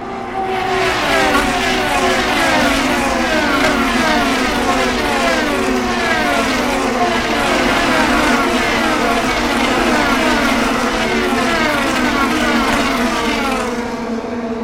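Several Indy race cars roar past at high speed on their third pass, their engines whining and sweeping in pitch as they go by one after another, loud and continuous with no voices.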